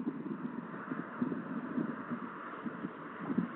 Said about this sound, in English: I hear the noise of the trucks, the traffic.